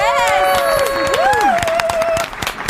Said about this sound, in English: Woo! Oh, and I like there's even more applause. Yes. Can I get more applause? All the fans, thank you. Thank you so much.